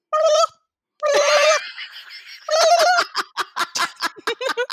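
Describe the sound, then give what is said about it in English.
A person does a loud turkey gobble impression: a warbling cry, a pause, then a longer burst that breaks into a rapid series of throaty gobbling pulses. “I like that you tilt your head back too and just like gobble gobble into the sky.”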